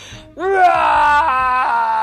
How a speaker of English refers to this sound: Roar! Sully roared.